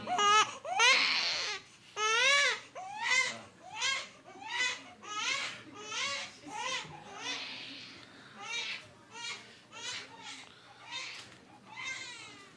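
A baby cries in a steady string of short, fussy wails, roughly one each second, fairly loud, with no talking over it.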